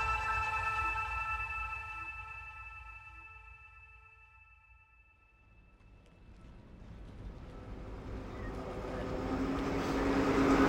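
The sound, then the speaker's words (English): Steady engine rumble from a vaporetto (water bus) in Venice, with humming tones that fade and return, then rising rushing noise from water and motor as the ride goes on. No one speaks. “I'm on a vaporetto, which means water bus, in Venice.”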